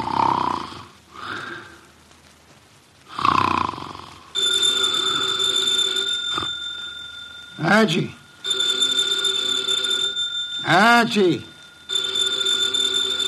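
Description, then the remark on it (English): A telephone bell rings in long, insistent bursts on the desk in Nero Wolfe's office after some heavy snoring from the detective in his chair, with a man's voice calling out briefly over the ringing. “The phone, if you please, Mr.”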